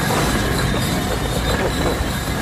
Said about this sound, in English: Loud tube train.